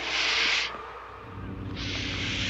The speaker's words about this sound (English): That snake is hissing at him. Does not like him one bit.